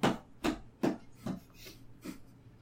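Six footsteps thud in a steady, even rhythm on a hard floor, each a dull knock that grows gradually fainter as the person walks away. No one speaks.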